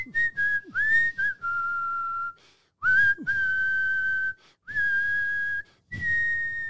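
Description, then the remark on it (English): A person whistles a simple rock song melody in a series of long, sustained notes with brief pauses between phrases, clear, with no talking. “What's another whistling rock song?”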